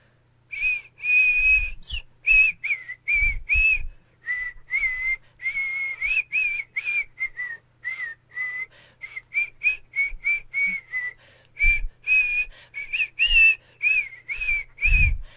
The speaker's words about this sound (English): I'll whistle it and then I'll look it up.